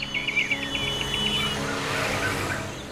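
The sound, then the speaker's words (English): An early bird at dawn sings a quick, repeated trilling chirp for about a second and a half against a steady rumble of passing traffic, which then swells and takes over. “Like Ashish, Pratyusha B also misses catching the delicious noise that the early birds make at dawn.”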